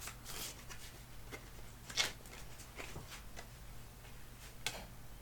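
A deck of cards being shuffled, a quiet run of soft, irregular papery riffles and snaps with a few sharper clicks, over a faint steady hum and no voices.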